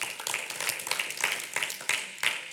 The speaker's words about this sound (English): Can somebody give a hand clap for that?